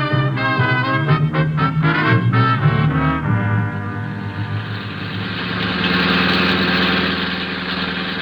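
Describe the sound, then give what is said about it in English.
A car engine idles with a steady, rumbling drone that holds evenly for several seconds, coming in after a short burst of tonal, pulsing sound. Fairly loud, with no voices. “My poor car.”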